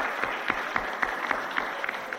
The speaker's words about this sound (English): Give her a clap anyway.